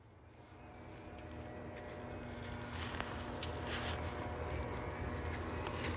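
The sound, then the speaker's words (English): Steady shuffling and crunching footsteps through dry, dead leaves at the Millennium Field, a continuous rustle that grows a little louder as it goes, with no voices. “I was hoping to catch the soft patter of rain in the trees, and you've just got the shuffling of the other rain with an E on dead leaves.”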